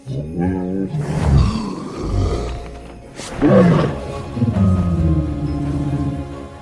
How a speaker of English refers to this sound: In How to Train Your Dragon, the sounds of tigers, horses, and elephants were all used for the dragon named Toothless.